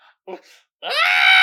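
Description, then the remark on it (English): A couple of brief vocal sounds, then an adult voice imitates a boy's scream: a loud, shrill, sustained wail held until the end. “And every time the boy wants something, he starts screaming.”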